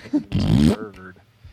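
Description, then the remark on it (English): A person blows a loud, buzzy raspberry with their mouth, a single sputtering burst of about half a second that trails off into quieter voiced sounds. “I almost feel bad for fart noising Expendables 2.”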